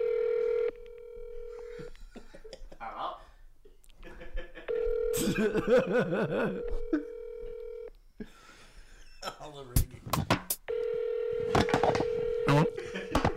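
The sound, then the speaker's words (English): Steady telephone dial tones sound in several long stretches as someone phones their father, broken by dialing clicks and beeps, with people talking and chuckling quietly in the gaps between them. “I'm gonna call my dad too.”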